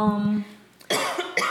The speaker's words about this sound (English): I'm sniffling, guys, sorry.